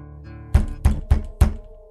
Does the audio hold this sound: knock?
yes